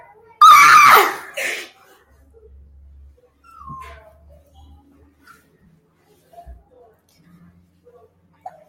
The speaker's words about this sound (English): She follows the footsteps and screams very loud.